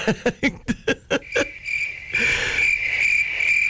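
A cricket chirps on its own, starting with about eight quick, evenly spaced pulses that blur into a steady, high trill, clear with no talking.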